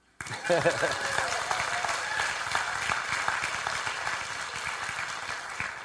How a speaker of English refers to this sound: Now you can clap.